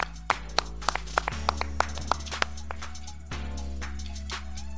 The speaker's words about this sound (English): Clap it up. Clap it up.